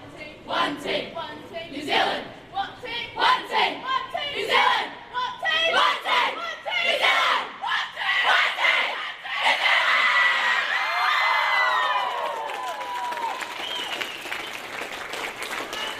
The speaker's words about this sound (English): Arms linked in a tight circle after arriving home from Uruguay this morning, the New Zealand under-17 women's football team gathered for one final celebratory chant before parting ways.